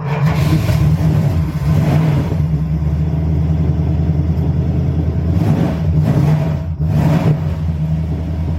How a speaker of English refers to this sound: You know, it's just a real nice example of a 1970 Dodge Coronet RT. Fire it up and see what we got.